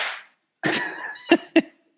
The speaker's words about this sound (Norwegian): Hør nå, klasker meg på låret.